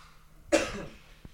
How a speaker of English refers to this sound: But before we do that, I'm going to turn my mic off and cough for a second. Hold on a second.